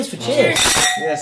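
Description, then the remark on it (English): Wine glasses clink together in a toast, a bright metallic ring with high sustained overtones lasting about a second, while voices murmur faintly underneath. “We should have a cheers.”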